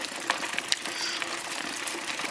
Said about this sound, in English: His bike bounded over the brush, kicking aside rocks, and nearly rammed into a boulder.